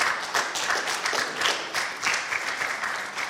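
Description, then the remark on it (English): A young crowd in an auditorium claps and cheers steadily for a few seconds: dense, bright, continuous applause with some whooping voices mixed in and no speech over it. “You know, young people will cheer about anything.”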